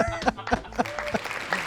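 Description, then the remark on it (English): Several sharp finger snaps ring out at an uneven, unhurried pace, five or so crisp clicks, with a faint murmur of voices running underneath. “Snaps.”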